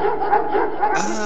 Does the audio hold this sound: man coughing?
no